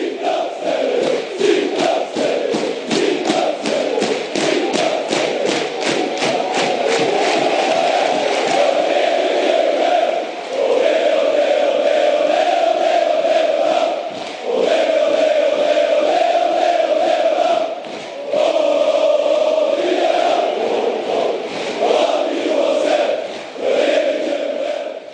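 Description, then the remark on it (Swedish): A large crowd of football supporters sings loudly together in a sustained chant, with rhythmic claps driving the first few seconds and a few brief dips between phrases. “Alla sjunger. Alla ställer sig upp.”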